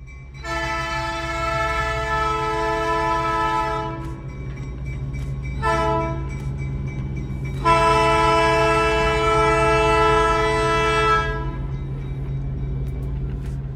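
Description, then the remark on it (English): The whistle of a Durango and Silverton Narrow Gauge Railroad steam train in downtown Durango, Colorado, sounds three times, a long blast, a brief toot, then another long blast, loud over a steady low rumble of the locomotive. “We're going to let the Durango and Silverton Narrow Gauge Railroad take us out this week.”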